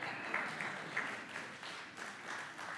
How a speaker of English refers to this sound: And guys, y'all should literally applaud her because there are so many Hebrew names in this passage right now.